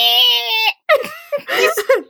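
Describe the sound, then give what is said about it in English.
A person yells in a loud, strained bleat imitating a baby goat, one long sustained cry followed by a few shorter wavering yelps, unaccompanied. “I love the goat ones.”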